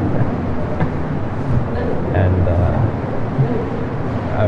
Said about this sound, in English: I'm probably wasting audio space and people's space on MP3 players and everything with 9 minutes of nothing, but if you're into it, then you can just put on your headphones and enjoy the 9 minutes of the stereo subway ride.